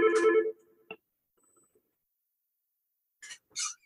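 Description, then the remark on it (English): A mobile phone rings briefly, a short bright electronic tone that cuts off after half a second, followed by a faint click, then quiet and a couple of soft rustling bursts near the end. “Sorry, my phone was going.”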